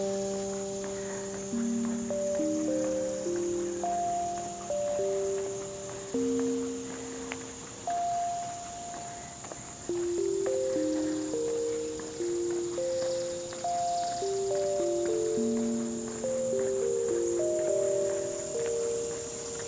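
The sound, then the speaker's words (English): Cicadas drone in a steady, high buzzing chorus throughout, with no speech, while soft sustained musical tones drift underneath in a slow, shifting melody. “Can you hear the swells and the dips, the cicadas singing?”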